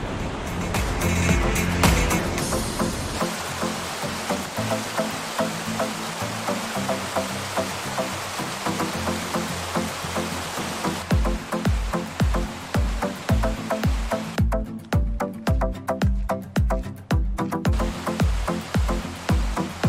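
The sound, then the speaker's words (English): Booth Falls, on the Booth Falls Trail, gives a steady, full-bodied rush of water, loud and continuous. Partway through, a regular low thumping beat comes in over the roar and carries on to the end. “Just listen to that water roar.”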